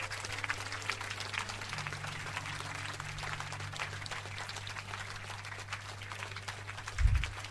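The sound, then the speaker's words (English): A church audience claps hands during a sermon in a dense, steady patter of many overlapping claps, fairly soft and continuous, with a low hum running underneath throughout. “Clap your hands.”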